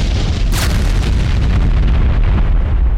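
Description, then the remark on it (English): A loud, deep explosion roars with a sharp burst early on, then rolls into a heavy, sustained rumble that fills the whole stretch without fading. No voices are present. “And then a moment later, the roar of an explosion.”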